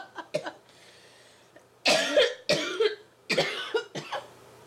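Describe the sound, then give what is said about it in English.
A coughing fit: a couple of small coughs, then a run of harsh, loud, rasping coughs in quick bursts, with a faint hum underneath and no talking. “I just have my own coughing fit.”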